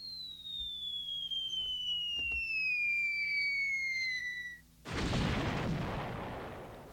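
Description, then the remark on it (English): A cartoonish falling-bomb sound effect: a long descending whistle glides downward for several seconds, then a loud, broad, rumbling explosion bursts and slowly fades out. “No, I dropped a bomb.”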